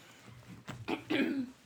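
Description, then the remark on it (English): A voice fakes hiccups: three short, abrupt vocal bursts in quick succession, each a bit louder than the last, with the final one stretching slightly longer. No talking. “No, that was a fake hiccup.”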